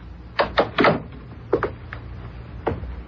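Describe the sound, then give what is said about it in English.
A worried husband knocks on a bedroom door: three firm raps, a pause, then two quicker knocks and a final single tap, clear with no one speaking. “it is a very worried husband who knocks on a bedroom door.”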